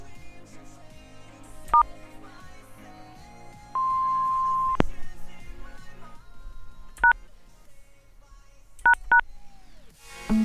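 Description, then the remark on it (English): Phone keypad tones beep out a remote access code in an attempt to hack into someone's phone, in short, separate presses, a single one then a quick cluster of three near the end, with one longer steady tone midway, over a quiet musical background. “Trying to hack that douchebag's phone.”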